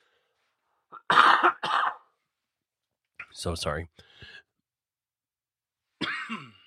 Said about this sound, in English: One second, I got a cough.